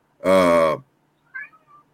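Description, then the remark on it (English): A cat named Apollo lets out one loud, drawn-out meow, followed by a softer, brief chirping trill about half a second later. No one talks. “So does your cats, clearly.”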